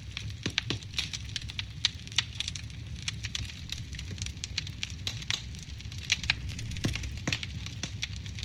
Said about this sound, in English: Hey, Google. Play relaxing sounds. Playing relaxation sounds. And now we're hearing fireplace.